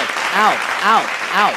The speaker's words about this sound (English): Ow. I'm sorry. That's so loud. All I hear is clapping. Ow. It sounds like they're just furiously slapping you.